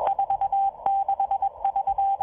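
A numbers station radio transmission: a rapid series of short, steady mid-pitched beeps in bursts, some held longer, over faint static with occasional sharp crackles. No voices.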